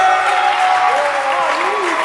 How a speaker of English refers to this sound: Clap your hands for him.